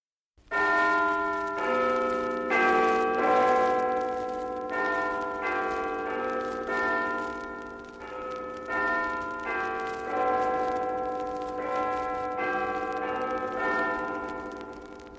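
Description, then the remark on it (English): A church clock bell in Tudor London strikes noon, ringing out in a steady sequence of loud, resonant tones, each stroke arriving about a second apart and humming on as the next begins, with no voices present. “As the clock strikes noon, the streets of Tudor London fill with the enticing aromas of various foods being prepared for lunchtime.”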